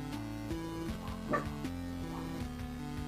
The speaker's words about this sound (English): That's a lot of barking, hang on. That's like more barking than he normally does.